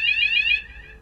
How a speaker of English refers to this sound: What was that? That was an alarm. Right, okay. It happens every week.